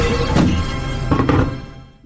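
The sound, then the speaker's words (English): A heavy baseball signed by David Price is dropped onto a new computer, giving a dull thunk followed by a second knock a moment later, over a steady background hiss with no talking. “Dang, that's heavy. Baseball. Listen to that thing. You could bang someone over the head with that. I'm going to drop it on my new computer.”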